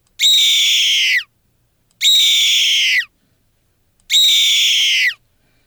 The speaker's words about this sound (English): Well, that's a bird of some type, of course, and that is another animal that's native to this area, and that's a red-tailed hawk. The red-tailed hawk, their range is from Canada and Alaska down to Panama.